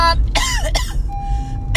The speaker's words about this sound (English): yeah, so if you hear me coughing, if you hear me running out of breath and I'm trying to gasp for air, if you hear me, if you don't even hear anything, you just hear me breathing, it's because I'm trying to get oxygen, okay?